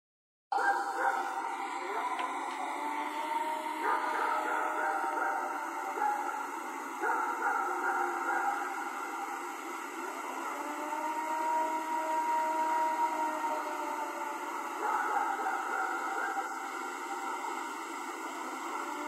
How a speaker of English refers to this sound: Now, there's definitely some dogs barking there. I was going to say, is that dogs barking too? Because I definitely hear that weird long howl thing. That... Yeah, it sounds like a siren, kind of.